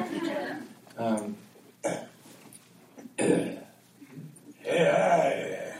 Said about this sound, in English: Sorry, I got to clear my throat before I sing. Oh, yeah. Part of his pre-show warm-up.